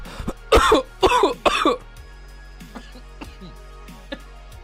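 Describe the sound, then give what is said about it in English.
Three loud, harsh coughs in quick succession, followed by a few softer throat-clearing hacks and wheezy breaths as someone recovers from inhaling some of a breakfast sandwich while doing heavy breathing. “I tried to do some heavy breathing for you, and I inhaled some of my breakfast sandwich.”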